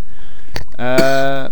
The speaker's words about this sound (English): go on, cough. That's it, bring it up.